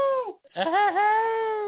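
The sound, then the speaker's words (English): A human voice mimics a sad, mournful howl: a short falling wail, a brief break, then a long, loud, wavering cry held steady to the end, with no other sounds. “Oh, that sad little swollen tooth hyper sloth howl.”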